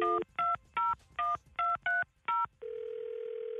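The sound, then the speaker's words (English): A telephone number is dialed to call the caller's father: seven short, evenly spaced touch-tone beeps of varying pitch, followed by a steady, continuous tone. No one speaks. “We're going to listen in, and you call him right here, okay?”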